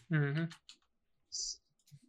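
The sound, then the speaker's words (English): A short voiced murmur, then a few scattered keyboard clicks at irregular intervals, with one brighter, hissy keystroke standing out among them. “My keyboard is going out.”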